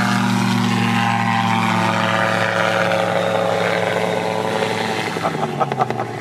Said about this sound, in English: He's doing a fun turnaround. He did a relatively steep climb out, and then a couple hundred feet above the departure into the runway, he basically pulled a 180 in midair and then came back down at the runway.